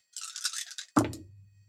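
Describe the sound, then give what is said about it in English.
Dice for a charisma and firearms roll rattle with a quick, bright clatter for almost a second, then hit a surface with one sharp knock that leaves a low, fading hum. No one speaks. “3 successes, but that's extra because I rolled 2 tens.”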